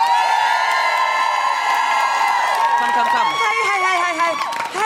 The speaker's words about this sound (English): Don't cheer so loudly for another venue in this venue. It'll hurt its feelings.